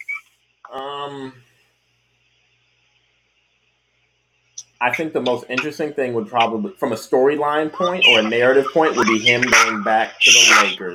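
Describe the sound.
A dog lets out a single short, high whining yelp that trails off, followed by a pause of silence before a person starts talking steadily.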